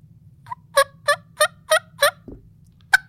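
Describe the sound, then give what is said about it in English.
A homemade single-reed elk call imitating a turkey: five loud, evenly spaced yelps in a quick rhythmic run, followed by a short pause and one last sharp yelp, over a low steady hum. “And if you do have one, like I've made elk calls you can even get some decent subtle turkey sounds.”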